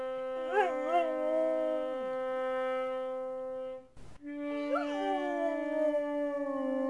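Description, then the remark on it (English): A puppy howls in wavering, rising cries, trying to match scales played on a brass horn. The horn holds steady notes while the dog's voice slides up and down alongside it, fairly loud, with a brief pause midway. “Part is when he tries to match my scales with howling.”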